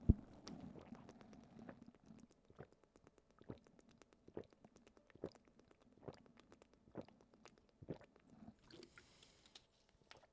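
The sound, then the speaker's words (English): Someone drinks water during a water break in a steady series of wet gulps, about one per second, each a short sharp swallow over a low gurgling rumble, with no talking. “I need a water break. Hold on, you guys get to hear the gulp.”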